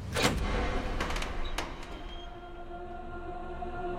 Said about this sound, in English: And she opens the door.